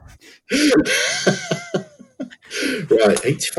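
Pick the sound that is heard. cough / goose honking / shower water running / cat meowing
cough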